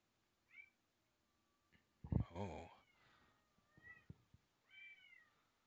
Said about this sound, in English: I think I heard a ghost cat.